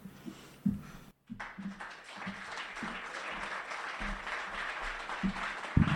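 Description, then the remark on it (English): Audience applause for a first-time performer breaks out after a brief pause and holds steady, a dense wash of many hands clapping with a few louder individual claps and low murmurs poking through. “Give her a big old round of applause.”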